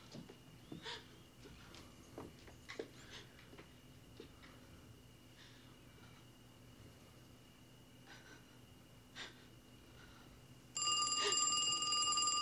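After a stretch of quiet with a few scattered clicks, a telephone suddenly starts ringing loudly, its harsh, steady ring continuing to the end.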